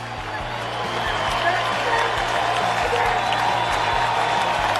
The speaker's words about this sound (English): Everybody standing up and applauding for the great Pujols.